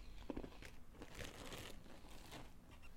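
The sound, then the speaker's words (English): Quiet crunching of M&M and nut trail mix being chewed, with a series of irregular crisp crunches and some crinkly rustling, and no talking. “Crunch, crunch, crunch.”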